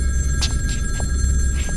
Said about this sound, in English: A phone on my bedside table begins to ring.